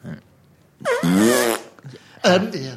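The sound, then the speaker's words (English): A person blows a loud, wet raspberry imitating a fart, with a short buzzing burst followed by a second, briefer one. “What is your fart to mean?”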